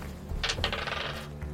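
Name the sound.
dice being rolled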